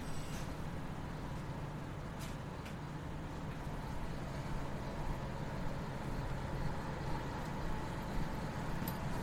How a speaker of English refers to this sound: So we've come out back onto the main drag and the traffic is roaring again. We're on Yasukuni Dori.